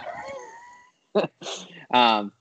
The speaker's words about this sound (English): Sorry, my dog is very active right now for some odd reason.